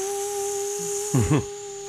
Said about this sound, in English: pull out my little Hoover?